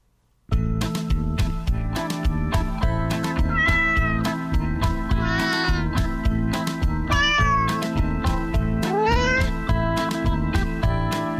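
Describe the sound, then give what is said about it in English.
Cats meow over a steady, rhythmic music backing in a song, with about four drawn-out, rising meows spaced a second or two apart, loud, and no talking. “Yowlin', yowlin', yowlin', hear them cats a-howlin', can't they quit that meowin' inside?”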